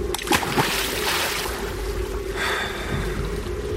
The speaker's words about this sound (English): Eventually, with a strange calm, Andy picked up our radio, carried it over to the side of the boat, and dropped it into the water.